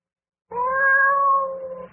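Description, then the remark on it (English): A cat lets out a single long, loud yowl that starts abruptly, holds a steady wavering pitch for over a second, then trails off. No other sounds or voices accompany it. “The Curse of the Cat.”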